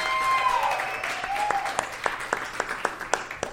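Audience applause, a dense wash of clapping with a brief whistle-like tone early on, thinning out until only a few separate, sharp claps remain at the end.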